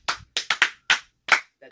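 A handful of sparse, uneven hand claps, about seven sharp smacks at an irregular, halfhearted pace, with short silences between them and no voices.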